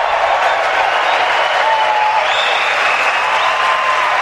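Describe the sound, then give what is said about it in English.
A large, excited crowd at a debate applauds steadily and loudly, a dense unbroken wash of clapping with a few faint whistles rising above it, lasting the whole stretch without any break. “I have never seen a crowd as excited and hepped up as this one is.”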